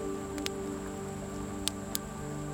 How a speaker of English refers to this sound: You can hear the wind and the rain outside your cottage, but it doesn't bother you at all because you are here in this beautiful, warm and friendly place, feeling ever so welcome.